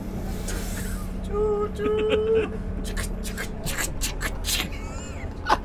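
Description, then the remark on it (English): Someone imitates a train with their voice, making wavering whistle-like hums and then a run of breathy, rhythmic hissing chuffs over a steady low rumble. “Here, shush for a minute, I'll do some train noises.”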